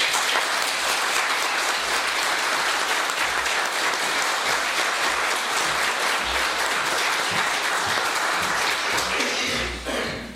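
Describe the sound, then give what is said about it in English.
An audience at a worship service breaks into sustained applause, a dense, steady wash of many hands clapping at an even loudness for about ten seconds before starting to taper off at the end. “Following worship today, we will be having a small reception in the hall, so please join us if you're able to, and a round of applause.”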